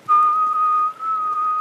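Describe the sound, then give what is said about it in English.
A person whistles one steady, sustained split note, made by sending air under the tongue, with a faint second tone above it, holding it for over a second with a brief dip partway through. The whistle is clear, with no talking. “just have a go at making the whistling sound and let your tongue just move around inside your mouth”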